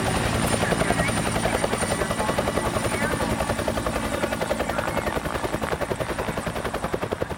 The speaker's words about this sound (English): All right, let's get him in the chopper.